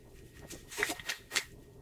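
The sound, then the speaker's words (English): Someone quietly sips water, a few short wet slurps and a soft swallow spaced over a couple of seconds, with no talking. “Let me sip my water first.”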